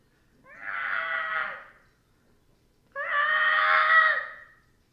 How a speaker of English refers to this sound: Screeching noise echoes. You get the sense that something knows you're there now.